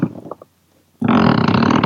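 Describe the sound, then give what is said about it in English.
A sofa creaks under shifting weight, letting out a loud, low, buzzing squeak that sounds just like a fart and runs on steadily after a softer rumble and a brief pause. “That was just me moving in my seat, unfortunately. Like a really fart. It's the sofa, unfortunately, rather than my own output.”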